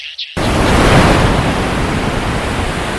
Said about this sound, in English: That's the ocean, in case you're wondering.